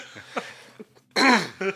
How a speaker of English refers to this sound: No, I just stifled in a cough, mate.